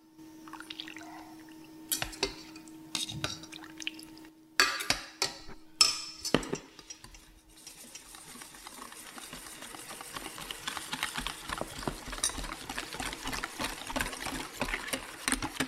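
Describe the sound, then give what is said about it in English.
A few clinks and a short pour of warm milk and cream, ladled into a bowl of cocoa powder and cornstarch mixture, then steady, rapid whisking, a continuous rhythmic swishing and tapping that carries on to the end without any talking. “So once you pour it in, you start whisking.”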